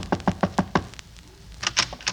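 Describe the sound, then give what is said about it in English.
A woman disguised with a big hat and a veil knocks on a door: five quick, evenly spaced knocks, firm and sharp, then a short pause and a few more thuds. No one speaks. “Yeah, she found out that my radio sponsor was Wildwood Cream Oil, so she disguised herself with a big hat and a veil and knocked at my door.”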